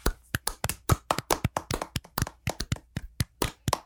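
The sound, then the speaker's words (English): A handful of people clap together to close out a Disney Channel Games athlete bracket, in a quick, uneven burst of sharp hand claps that run steadily for a few seconds with no talking. “And as we do at the end of every single bracket, we are going to go ahead and clap it out.”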